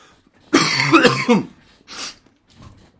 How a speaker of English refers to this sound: So, sorry if I cough here and there. You're just going to have to bear with me. I'm overcoming the tail end of some kind of illness or flu or AIDS or something like that.